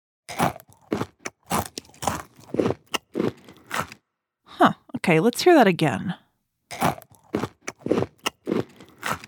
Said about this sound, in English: Chewing is when we use our mouths to break up the food we eat before we swallow.